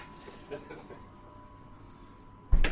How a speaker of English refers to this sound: We're just going to the engineering workshop on the port side. Just open the doors. In we go. Clamber in. Into the warm.